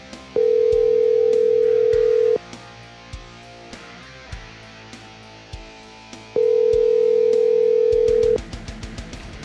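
A phone call rings out with two long, steady ringback tones separated by a pause, with soft clicks and a quick run of short beeps near the end. No one speaks.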